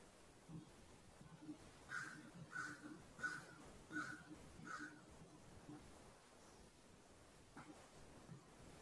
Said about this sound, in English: I greet the crows who are singing with a smile, with appreciation.